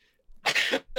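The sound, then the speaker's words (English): A single loud sneeze bursts out, a short harsh blast of breath with no talking around it, and a second burst just begins at the very end. “Bless you.”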